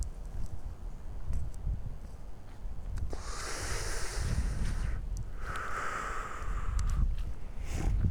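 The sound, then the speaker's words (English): Wind blows steadily outdoors on a cold day, a low rumbling buffet on the microphone with a couple of stronger, hissing gusts swelling through the middle. No one speaks. “What's a nice walk I can take that's not too windy?”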